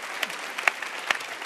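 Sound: audience clapping hands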